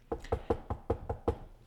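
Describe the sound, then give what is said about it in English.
A rapid series of about seven firm knocks on a door in an even, quick rhythm, with a solid, hollow thud and no voices. “I think there's someone at your door”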